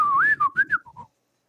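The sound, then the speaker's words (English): A person whistles in imitation of a dolphin's signature whistle: a short, bright, swooping tone that rises and falls, then breaks into a few quick chirps before stopping after about a second. “They develop their own individual whistles, and even after the tone of the whistle is changed, the dolphins still recognize theirs and their dolphins, their other dolphins' names that's in their groups.”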